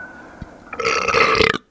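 A single loud, drawn-out burp rumbles for nearly a second, then cuts off sharply into silence. No one speaks.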